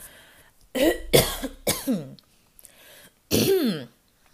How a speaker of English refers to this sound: Oh my God. What is. Hold on. I'm finna cough.